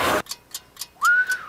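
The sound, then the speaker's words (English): A burst of rushing air, then a few soft breathy puffs before a thin, short whistle tone briefly sounds and fades out, as a man fails to whistle. “All right, he can't even whistle.”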